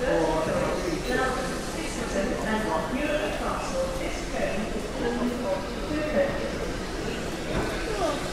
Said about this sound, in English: So as you can hear, trains going everywhere from here, as well as our rather special train today.